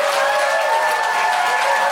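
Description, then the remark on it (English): A crowd applauds loudly and steadily for Lou Sanders at the end of a show, a dense wash of many hands clapping at once with no pause, some faint cheering mixed in. “Can I have a huge round of applause for the incredible Lou Sanders?”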